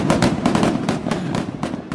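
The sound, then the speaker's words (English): A rapid, dense crackle of fireworks bursting in quick succession, sharp popping bangs layered over a continuous rumbling roar, loud throughout. “Yeah, I just got fireworks. There we go.”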